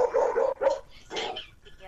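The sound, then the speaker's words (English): A dog barks and yips in a few short bursts, with whiny tones between them, over a faint background. “Is your food good enough for a dog?”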